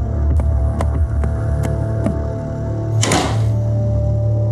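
A bedroom door slams shut with one heavy, booming thud, preceded by a handful of sharp, evenly spaced taps over a steady low hum.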